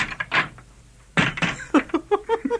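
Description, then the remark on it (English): A door is opened by a guard at the court of Nebuchadnezzar, king of Babylon: a sharp metallic clank of the latch, some rattling, then a run of short creaking squeaks as it swings. No one speaks. “Open the door, guard, that we may depart.”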